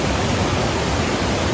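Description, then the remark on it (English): Steady, continuous rushing of a flowing river at a spot mostly untouched by man, a dense even hiss without pauses or distinct splashes, fairly loud and unchanging throughout, with no voices. “This spot that's mostly untouched by man. Even when I leave, it'll be here. The water will flow.”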